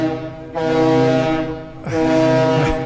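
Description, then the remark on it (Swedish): A ship's horn blares loudly in Visby harbour, two long, deep, droning blasts in close succession, rich and resonant, with no voices present. “Tuta här lite i Visby hamn.”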